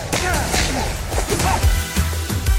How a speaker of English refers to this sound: I just slapped you. Are you all right?